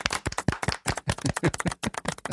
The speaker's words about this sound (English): Well done, Palace. You did good. Golf clap. You did. Golf clap.